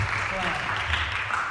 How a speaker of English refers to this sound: Very good. Round of applause. Thank you very much.